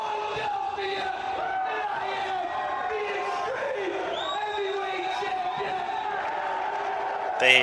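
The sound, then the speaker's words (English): A large wrestling arena crowd cheers and shouts steadily for Steve Austin, a dense roar of many voices with scattered yells rising above it, swelling briefly louder at the very end. “The crowd likes Steve Austin better than him.”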